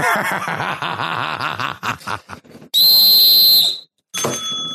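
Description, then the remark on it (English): After a stretch of laughter, a whistle is blown in one loud, shrill, steady blast lasting about a second, then a brief pause and another piercing tone. “Yeah, you keep that whistle because you're going to blow it.”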